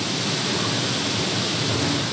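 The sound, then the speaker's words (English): A steady, dense rushing hiss of grain pouring from a truck with its bed raised into a ground grating at a silo dumping area, raising huge clouds of dust, loud and continuous like heavy rain or a waterfall, with no talking. “Grain pours into a grating in the ground, making huge clouds of dust.”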